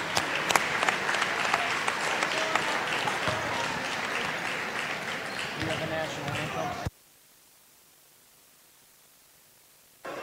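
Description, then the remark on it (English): A loud, dense round of applause with many overlapping sharp claps and crowd noise runs for about seven seconds, then cuts off abruptly into near silence, honoring the Coldwater Cardinals boys basketball seniors and their parents at the Floyd EB. “Let's give them a big round of applause, everybody.”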